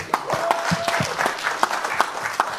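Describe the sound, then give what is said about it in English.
A crowd applauds former heavyweight boxing champion Hasim Rahman, clapping steadily, with dense overlapping hand claps and a few sharper ones standing out over the broad clatter. No one speaks over it. “Champ, round of applause.”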